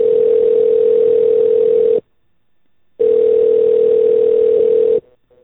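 A phone line's ringback tone while a call to Yorktown Center Giant Eagle is transferred to customer service: two steady, buzzing rings of about two seconds each, separated by a short silence, loud and with no voices.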